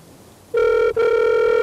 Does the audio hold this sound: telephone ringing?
yes